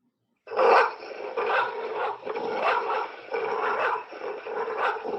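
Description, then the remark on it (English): A service dog barks and snarls aggressively while protecting a little girl, loud rough bursts coming in quick succession with barely a pause between them, no voices present. “This is a recording of a service dog protecting a little girl.”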